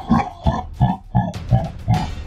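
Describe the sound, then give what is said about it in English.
A deep, guttural demonic chuckle: about six low, grunting pulses in a steady rhythm, loud and rough, with no talking over it. “You can hear this kind of demonic chuckle.”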